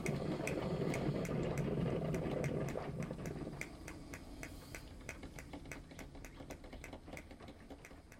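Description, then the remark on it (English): A Breville Grind Control 12-cup grind-and-brew drip coffee maker brewing coffee in the morning: a dense, rumbling whir for a few seconds, then steady rapid ticking over soft bubbling and hiss, with no voices. “There it goes. This is the Breville Grind Control 12-cup coffee maker.”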